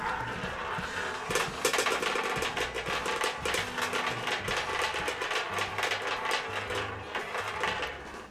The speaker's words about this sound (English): The roulette is spinning.